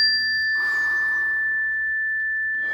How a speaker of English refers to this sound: And I'll just hit the chime every 30 or 40 seconds and we can sit together.